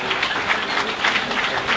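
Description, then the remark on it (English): A round of applause from many hands at a morning church service, welcoming visitors: a dense, steady wash of clapping that holds at an even, fairly loud level with slight swells throughout. “And this next round of applause is to make you feel that welcome.”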